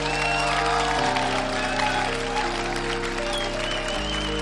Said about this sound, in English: And let's give another round of applause to your entire 2024 Homecoming Court and nominees.